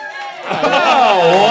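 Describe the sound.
A live audience bursts into applause and cheering about half a second in, the crowd noise swelling quickly and staying loud and sustained with voices whooping through it.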